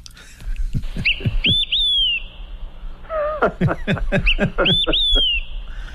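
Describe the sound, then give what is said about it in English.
An olive-sided flycatcher sings two clear, loud whistled phrases, each a few quick notes ending in a long downward-slurring whistle, with sharp chips and other bird calls around them. “And that is the olive-sided flycatcher.”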